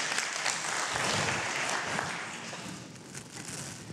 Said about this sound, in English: Let's give him a round of applause this morning.